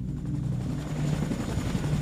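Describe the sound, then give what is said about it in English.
One of two helicopters leaving a military raid drones steadily with a deep, throbbing low-frequency rotor chop, fairly loud and continuous throughout, with no voices. “Also on board one of the two helicopters were garbage bags filled with hard drives, DVDs, cell phones, documents, and more.”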